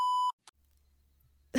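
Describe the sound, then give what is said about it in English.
A loud, steady electronic censor bleep over a swear word, at a single mid pitch, lasts about a third of a second, cutting off sharply, followed by a brief noise burst, low hum, then a loud sound at the end. “What's the word that rhymes with ears that they bleeped?”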